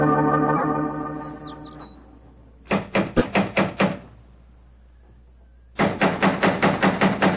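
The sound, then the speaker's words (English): Two bursts of brisk, evenly spaced knocking on a door, each about seven or eight sharp raps, separated by a pause, after a fading sustained tone at the start. “If he's home, mother devil, doesn't he answer the door?”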